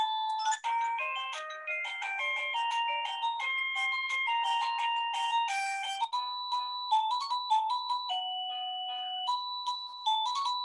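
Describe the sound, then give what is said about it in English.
A bright electronic chime unit plays a cheerful Christmas tune, selected with its chime button, its clear, tinny notes stepping through the melody continuously and fairly loud, with no voices present. “The one is the reset button on the top, and the other one is this chime go through button that's letting me listen to these chimes.”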